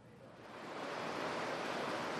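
Gore Creek rushes steadily in front of Up the Creek in El Segundo, between the Cover Bridge and the International Bridge, in the morning sun, a dense, even hiss of flowing water that swells slightly in the first second and then holds constant, with no voices over it.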